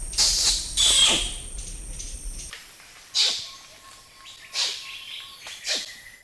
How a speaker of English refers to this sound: There's a new study about orangutans, and it studied variations in one of the noises that they make, a noise called kiss squeaks. And we've got a clip here of what that sounds like.